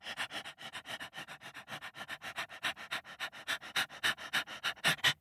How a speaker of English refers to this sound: A dingo came with a tongue long sticking out of its mouth trying to keep cool.